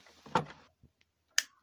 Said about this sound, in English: She flicks on the light.